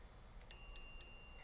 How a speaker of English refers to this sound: And the bell was a nice touch.